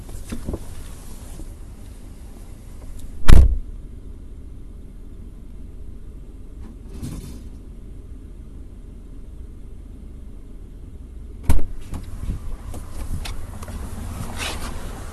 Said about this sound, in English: I'm going to hop out of the truck for a second. Just take a look. Grab my flashlight. Be right back.